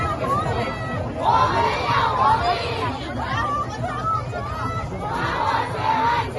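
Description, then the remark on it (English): A large crowd of protesters in China shouts together in loud, surging waves, voices rising and falling over a constant low rumble of chatter and noise. “fresh waves of protests breaking out in China.”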